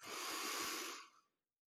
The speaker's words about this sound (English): We're not lifting our chest when we're breathing in. We're actually filling our belly, okay? Let's take 3 breaths together. Everyone in.